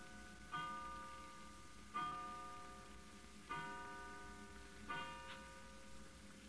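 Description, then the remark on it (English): A clock strikes twelve o'clock with slow, evenly spaced bell-like chimes, four heard here, each ringing out and fading before the next, with no voices. “12 o'clock.”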